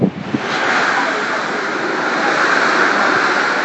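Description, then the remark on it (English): A steady, full wash of ocean surf rolls on shore, a loud continuous hiss of breaking waves with slight swells in intensity and no voices. “We're just going to end it with Ocean Waves.”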